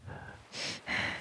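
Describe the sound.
Two loud breaths in quick succession, a rushing exhale followed by a harsher, raspy one, after a moment of low background rumble; someone breathing heavily while staring at something.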